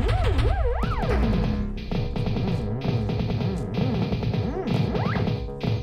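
Chaotic synthesizer music, loud and continuous, with warbling, swooping pitched tones and irregular percussive thumps, played with no humans involved by an elephant knocking the electric keyboard keys with its trunk; the drum-like sounds come from the keyboard.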